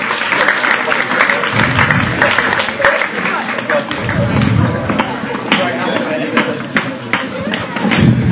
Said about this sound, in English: At that point, I'd love to give our volunteers a wonderful round of applause.